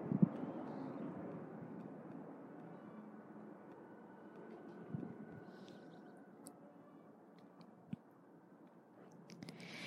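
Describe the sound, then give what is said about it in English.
A steady, low rumble of helicopter activity heard through open windows, muffled and fairly faint, with occasional small clicks and taps and no talking. “We have the windows open and obviously there's some helicopter activity.”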